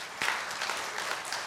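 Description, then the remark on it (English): A crowd applauds steadily, dense overlapping claps forming a continuous wash of sound at moderate volume, with no voices standing out. “You know who they're clapping for.”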